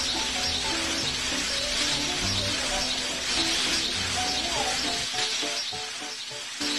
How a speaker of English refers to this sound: If that's raining outside, come on in, guys. I don't want anybody out there.